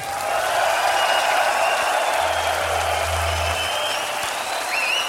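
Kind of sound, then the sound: crowd, audience cheering and applauding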